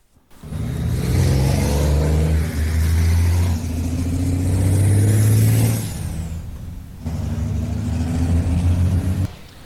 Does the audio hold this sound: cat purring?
no